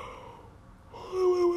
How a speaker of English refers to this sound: Oh, why am I'm out here making songs with my yawns and stuff.